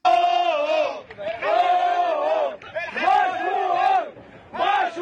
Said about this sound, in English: Those are the joyous sounds of the tugboat bros who successfully dislodged the Ever Given, the ship, from the Suez Canal.